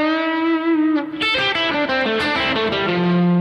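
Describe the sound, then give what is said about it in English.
A distorted electric guitar plays a a guitarist's lead line. It holds one note, then plays a quick pentatonic run with every note picked separately instead of using pull-offs, ending on a lower sustained note. It stays loud throughout, with no talking. “Now, if I play it all with pick strokes, it sounds like this.”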